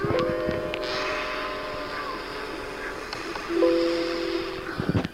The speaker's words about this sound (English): Yes. Doorbell rings. Who is it? I don't know. Got to go to the door to see who it is.